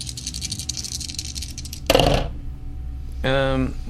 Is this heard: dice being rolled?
yes